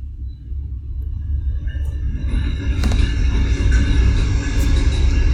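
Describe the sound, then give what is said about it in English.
A heavy, steady low rumble builds gradually as a train approaches and rolls past, with faint metallic squeals and clanks riding over the continuous roar. “Here comes the train.”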